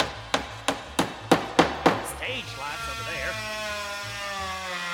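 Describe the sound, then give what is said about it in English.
Six sharp hammer blows strike wood in a quick, steady rhythm, loud, as a stage is set up on a desk, then give way to a sustained, wavering tonal sound for the rest of the moment. “Okay, gotta hammer this over here.”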